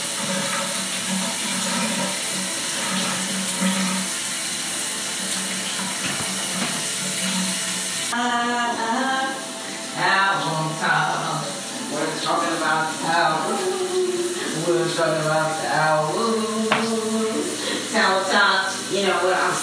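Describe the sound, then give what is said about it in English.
Water gushes at strong pressure in a loud, steady rush, like a powerful shower, at a Fairfield hotel. After several seconds a person starts talking while the forceful spray keeps roaring underneath. “In the background, you're hearing that strong water pressure.”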